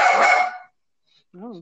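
A dog barks loudly: a harsh, rough burst, then after a short pause a single higher, tonal yelp-like bark.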